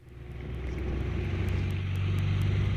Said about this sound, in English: Hey, I got traffic sounds. I'm from the country. To me, this is not relaxing.